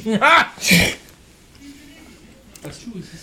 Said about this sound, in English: A sneeze.